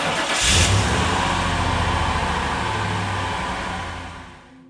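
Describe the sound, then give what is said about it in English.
A car engine cranks and catches with a brief rev, then settles into a steady rumble that gradually fades as the vehicle pulls away, with no voices present. “I searched his body for the keys to his car and found them in his shirt pocket.”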